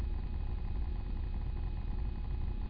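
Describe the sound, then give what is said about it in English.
A steady, low rumble of traffic fills the background, a continuous dull drone with no distinct passing vehicles and no voices. “We call traffic.”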